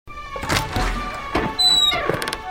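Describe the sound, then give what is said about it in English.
A door opening with a creak and a couple of dull knocks and thuds, along with some faint high-pitched squeaking tones. “And then we got door.”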